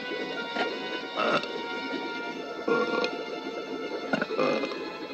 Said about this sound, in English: Quick, Charlie, burp, burp. If you don't get down, it'll catch you in the ribbon. I can't! You've got to burp, Charlie. It's the only way. Attaboy, burp again. Attaboy, come on. Ah, that's wonderful, Charlie.